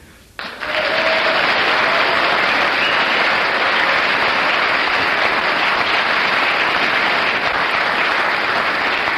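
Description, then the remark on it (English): Loud, sustained applause from a large crowd begins abruptly after a brief quiet moment and continues steadily at full strength throughout, a dense wash of clapping with no speech over it. “Well, you get 9 for your applause”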